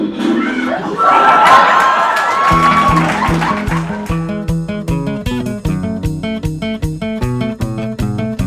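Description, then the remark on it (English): A crowd of people screams and shouts loudly for a couple of seconds, then the noise gives way to a steady, rhythmic musical beat that carries on to the end. “But this week's episode of the Stories Untold podcast is brought to you by Screaming.”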